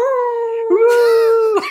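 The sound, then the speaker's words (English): People imitate wolves, howling at the moon together before watching the MTV show Teen Wolf: a long, steady howl, a second voice joining partway through in overlapping tones, ending in a couple of short, sharp yelps. Loud. “Boys, you ready to howl at the moon together?”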